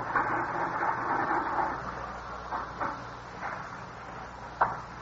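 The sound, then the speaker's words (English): A mechanical adding machine clacks a few times over a steady background hiss, with sharp irregular keystrokes and crank pulls as someone adds up the figures for the money taken from a store, and no one speaking. “I just finished adding it up. Just a minute. All right. I got the figures on the machine.”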